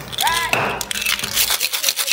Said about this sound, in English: So like I said, vodka, or vanilla vodka, we got the Campari in there, we got our Kahlua in there, and now we're just gonna add a single shot or 30 mils of freshly drawn espresso. Okay. Espresso in there. All right. Top up some fresh ice and we shake.